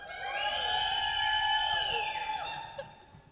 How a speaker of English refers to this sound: We are here in Butte, America for our first ever live recording of a podcast. Let's hear that crowd again.